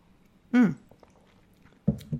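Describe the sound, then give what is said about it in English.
Someone takes a sip of water: a short voiced breath or hum, a pause, then two soft gulping swallows in quick succession, all fairly quiet. “If I have a brain freeze, I'm going to have a drink of water. I'm going to do that right now, actually.”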